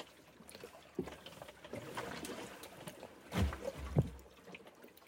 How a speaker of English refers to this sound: Waves are big and fast, relatively aggressive. Power Anchor seems to be doing its job, even though I've lost a significant amount of ground because of the strength and the speed of the waves.